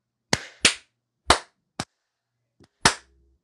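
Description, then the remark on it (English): Five sharp hand claps in an uneven rhythm, two quick ones, then spaced-out single claps, each with a short ringing tail and no talking. “I was clapping, and then I wait for you to go.”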